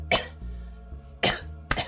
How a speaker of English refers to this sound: Bobby then coughed louder, and he made a strange wheezing sound